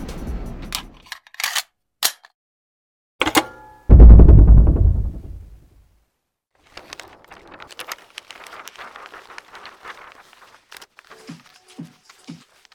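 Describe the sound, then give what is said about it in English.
An intro music cue built from sharp, snappy percussive hits leading into a loud, deep boom that rings out and fades, followed by a quieter crackling, rattling texture with a few soft low thumps. No voices. “I am digging this this music. I like the cue.”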